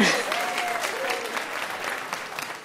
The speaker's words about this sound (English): We'll clap for that. You can clap for that, yes.